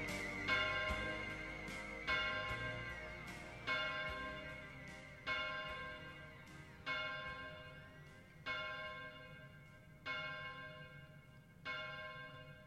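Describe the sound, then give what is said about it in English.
A deep bell tolls eight times at a slow, steady pace, each strike ringing out and fading before the next. A low hum sits underneath, and no one speaks. “Just let the bells finish.”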